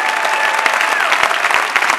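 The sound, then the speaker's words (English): An audience claps together in a dense, steady burst of applause, many hands overlapping into a loud, continuous patter with a few sharper individual claps standing out. “Your clap can be louder than this in Jesus' name.”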